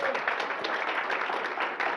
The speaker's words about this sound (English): I'd like everyone to give them a round of applause.